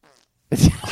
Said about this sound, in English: Are you going to fart into the mic?